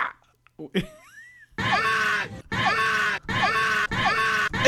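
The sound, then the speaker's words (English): A person lets out a series of loud, strained mock screams of someone being forcibly removed from a temple, four long wailing bursts in quick succession, after a brief quiet squeak. “Can I make the noise? I'm just kidding. Can I scream?”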